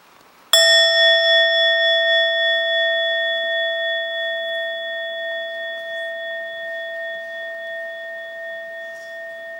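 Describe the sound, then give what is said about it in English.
A single Buddhist meditation bell is struck once for its full sound, ringing out with a clear, steady pitch and bright overtones, its tone lingering and slowly fading across the whole stretch with a gentle wavering pulse. “And then you invite the full sound.”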